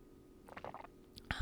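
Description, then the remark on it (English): A quiet sip of hot chai tea, a brief slurping draw lasting under a second, followed by a soft knock as the cup is set down. No one speaks. “Sorry, I'm going to take a sip of my chai real quick.”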